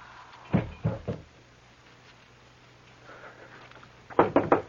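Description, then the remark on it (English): Someone knocks at a door: three firm raps, a few seconds of quiet with a low hum, then four quicker knocks, fairly loud, with no one speaking. “There's a door. Someone there.”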